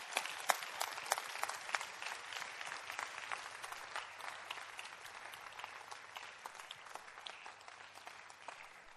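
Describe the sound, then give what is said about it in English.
An audience claps steadily throughout, many hands making a dense, crackling patter of overlapping claps at a fairly soft, even level, with no voices heard. “Oh, you won't clap for this one.”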